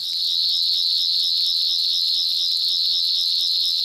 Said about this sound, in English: I hate telephones ringing when I'm beginning to get nervous.